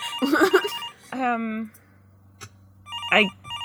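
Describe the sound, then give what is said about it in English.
A telephone rings in short electronic bursts, going quiet and then trilling again, with a brief voice and background chatter between the rings. “And I was like, should we just let it go to the answering machine?”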